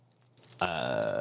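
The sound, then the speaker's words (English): Keys jangle on a keyring holding a drum key and the keys to a merch box, starting with a soft rustle and then breaking into a bright, sustained metallic jingle that shimmers and rings for a moment. “And then I got a drum key, just in case.”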